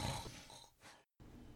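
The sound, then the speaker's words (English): A voice mimics snoring with a rough, guttural rasp that drags on for about a second, followed by a brief silence and then another low, grating breath sound, fairly loud. “And he's just snoring.”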